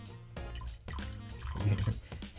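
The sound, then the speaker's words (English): Tullamore Dew whiskey, aged in rum casks, pours from a decanter into a glass, a steady trickling stream with small gurgles and drips that runs for a couple of seconds at a fairly quiet level. “The shape of the decanter is such that it shouldn't run down the side of the glass.”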